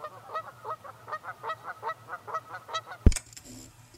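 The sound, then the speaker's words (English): Geese honk in a quick, steady run of about a dozen calls, ending in a sharp loud burst followed by a brief honk. “Number six, geese.”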